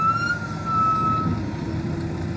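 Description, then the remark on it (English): Dense street traffic in Delhi, India rumbles steadily with engine noise, while a siren tone rings out over it early on and then fades as the vehicle passes. No voices are heard. “The traffic in the streets of Delhi overwhelms him.”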